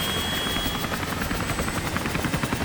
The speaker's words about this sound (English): Two helicopters carrying 51 Marines take off from the USS Kearsarge.